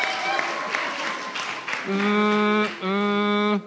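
An audience claps steadily for a couple of seconds as an applause-meter vote for a contestant, then two loud, sustained, tonal cheers or hoots ring out over the fading applause.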